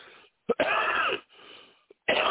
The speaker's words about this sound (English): Sorry. Man, I hate coughing like that on the air.